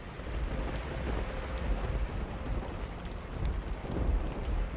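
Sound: rain with distant thunder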